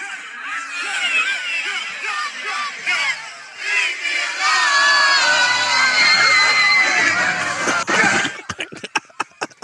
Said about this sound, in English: But what was funny was Kaylar Will quoted the tweet and she said, "The screams from the crowd are tearing me apart." Because they did start screaming when you hit them. Listen.